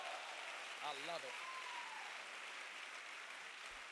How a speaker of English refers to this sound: Somebody shout hope and clap your hands like you love the Lord.